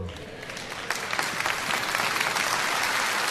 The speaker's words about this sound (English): Some of you should have been clapping a lot louder than that.